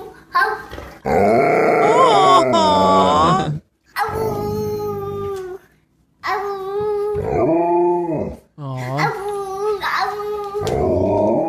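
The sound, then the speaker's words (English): A little boy and an Alaskan Malamute trade long, wavering howls back and forth, loud, with brief pauses between turns; the boy's voice imitates the dog's howl. “And here's a little boy in his Alaskan Malamute taking turns howling at each other.”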